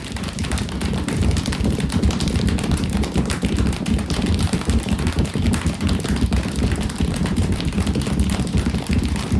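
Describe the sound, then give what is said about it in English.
A group imitates the storm stage of a thunderstorm built up from wind, light rain and heavy rain sounds, making a loud, dense, steady roar of rapid tapping, patting and thumping that holds at full intensity for the whole stretch, with no talking. “Now we can add all those sounds together to build up the thunderstorm, then calm it back down.”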